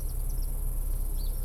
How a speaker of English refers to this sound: It's a nice day, 71 degrees Fahrenheit. The birds are actually chirping. The bees are out.